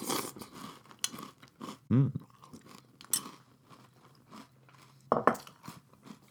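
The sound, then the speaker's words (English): Crunching and chewing of crisp French Toast Crunch breakfast cereal from a bowl, a steady series of crackly bites with a few louder crunches standing out, heard alone with no talking. “Since I did an episode, and I thought, hey, time for me to fill another bowl full of delicious breakfast crunch. And I have one right here.”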